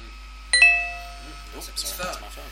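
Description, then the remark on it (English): A mobile phone rings with a bright two-note chime, the tones struck in quick succession and ringing out as they fade, followed by soft talking. “Sorry, that's my phone.”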